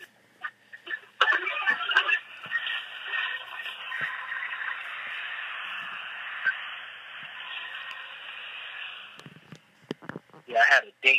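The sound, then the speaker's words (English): A blender blending a drink containing dates roars steadily for about eight seconds, its whirring motor holding a fairly even pitch before cutting off, followed by a few brief clattering sounds. “Hold on, one more blending moment.”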